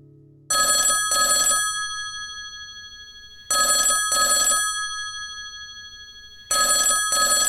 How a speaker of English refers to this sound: What? The phone's ringing. Hold on, let me get this.